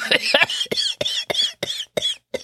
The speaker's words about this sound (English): Coughs up a little bit of blood.